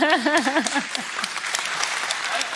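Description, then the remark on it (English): An audience breaks into steady, dense applause, with a wavering voice whooping over the opening moments before the clapping carries on alone at an even, moderately loud level. “They applauded him, they're encouraging him.”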